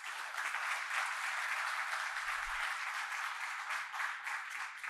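audience applause

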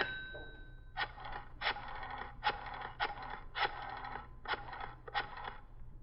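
dialing a telephone

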